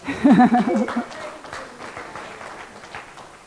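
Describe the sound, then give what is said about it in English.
A church audience breaks into applause, a dense patter of many hands clapping steadily after a brief vocal exclamation at the start, then continuing at an even, moderate level. “And you can clap that.”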